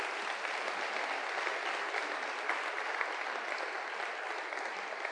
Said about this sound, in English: Y'all give these a hand clap if you would.